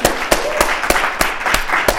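Applause from a group: a steady wash of many hands clapping, with sharper claps cutting through at a regular beat, fairly loud and sustained throughout, no voices.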